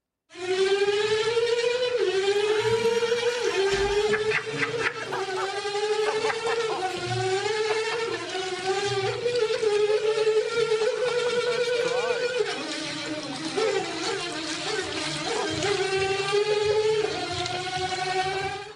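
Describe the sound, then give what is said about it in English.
A water tap whines loudly and continuously like a Formula One car, its buzzy, harmonic-rich pitch climbing and dropping in repeated sweeps, as if shifting through gears, with no voices. “A tap that sounds like a Formula One car.”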